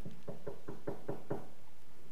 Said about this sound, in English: And so he was awake when late that night, very, very late, there came a knock at the door.